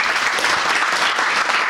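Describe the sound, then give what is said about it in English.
A crowd claps steadily, a dense, even wash of many hands with no breaks, loud and sustained throughout with no voices over it. “Can we just a round of applause for the guys here?”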